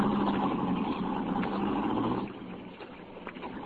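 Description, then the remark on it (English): A car engine runs as the car travels along a road, with a steady, muffled rumble and broad road-like hiss, moderately loud, easing slightly partway through. No one speaks. “Well, don't get out of the car.”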